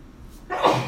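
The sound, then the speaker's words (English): A single sneeze bursts out after a brief quiet moment, a sharp, breathy blast that lingers for a beat. It's moderately loud, with no talking over it. “Bless you.”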